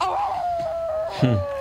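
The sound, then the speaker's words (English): Frances McDormand howls like a wolf at the Oscars: one long, steady, high-pitched note that glides slowly downward. A short, lower voice briefly joins in near the end. “Starts howling.”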